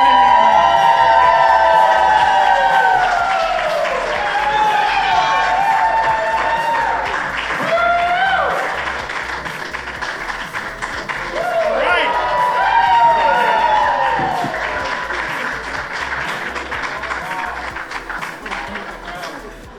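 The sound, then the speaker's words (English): A large crowd at a live show applauds loudly and steadily for about twenty seconds, welcoming the two hosts on stage: dense clapping mixed with whoops, cheers and shouting voices that swell, dip midway, then rise again. “I like that applause.”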